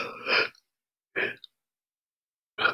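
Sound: person yawning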